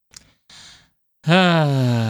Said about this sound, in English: I made you tired. I made you, don't do that. Don't do that. People are going to stop listening. You start yawning like that. I'm tired.